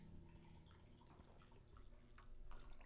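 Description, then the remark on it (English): Liquid splashes and trickles steadily, with small dripping sounds, like a drink being poured into a glass, no voices. “You poured up a lot.”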